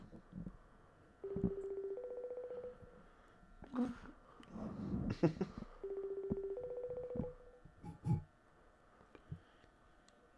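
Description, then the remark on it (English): A phone's ringback tone purrs twice through a handset as someone calls a friend, each ring a steady two-part burn with pauses between, while people murmur and shift and nobody picks up. “He's not gonna answer.”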